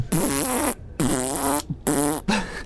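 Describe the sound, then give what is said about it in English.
A man blows raspberries with his mouth, imitating farts in three or four loud, buzzy bursts with brief pauses between them. “He's farting out of his mouth.”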